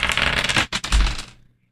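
Two six-sided dice clatter and rattle across a hard surface in a quick burst of tiny clicks, a brief pause mid-roll, then the noise tapers off as they settle.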